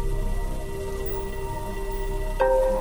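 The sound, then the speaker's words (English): Steady rain patters with a dense, even hiss, while a soft sustained tone hums underneath; near the end a brighter ringing note swells in over the rainfall. “Whether you're talking about C's or G's, though, it all starts with rain.”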